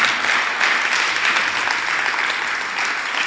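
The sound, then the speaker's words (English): A large group claps steadily for Jesus, a dense, sustained wash of applause for a few seconds with no voices standing out. “Jesus is the door. Clap for him.”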